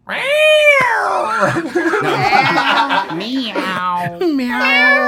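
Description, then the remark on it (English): People imitate a cat with loud, drawn-out meowing voices, one wavering call after another with overlapping vocal noises and a bit of laughter. “Can we redo the cat one then?”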